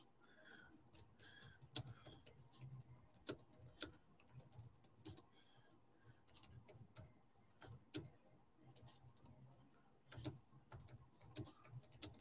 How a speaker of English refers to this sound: I was just typing this. For Instagram, Romans chapter 12.